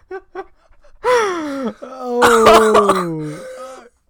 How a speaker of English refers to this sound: I'd like everyone to know I do have possibly pre-HIV, so that's why I'm coughing like this.